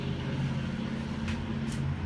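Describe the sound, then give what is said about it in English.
An engine idles with a steady, loud low rumble and droning harmonics, holding even throughout, with two brief hissy bursts breaking through near the end. No one speaks. “Engines, I'm telling you, let's leave them behind.”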